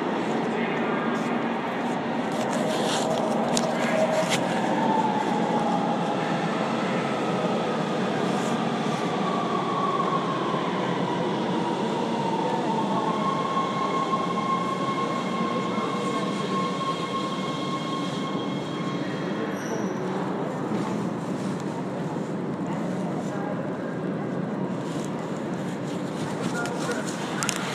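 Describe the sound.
A train rumbles steadily along the rails, with a thin metallic wheel squeal rising and fading partway through, while faint voices murmur beneath the continuous clatter.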